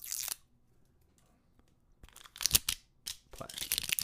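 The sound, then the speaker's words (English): Plastic wrapping is torn off the top of a newly bought, unopened bottle of Sweet Wheat bourbon in a few sharp, crinkly rips: one brief tear, a quiet pause, then a busier burst of crackling, tearing bursts that stop and start. “Plastic off the top.”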